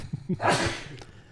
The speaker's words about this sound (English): Sorry, folks. I had to sneeze. It's all this damn pet hair from your dogs and the ones I brought with me.